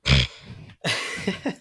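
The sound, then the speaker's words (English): A person fakes a cough: a sharp burst followed by a second, raspier throat-clearing cough, loud and on its own with no other talking. “Much like Chrysler. Cough.”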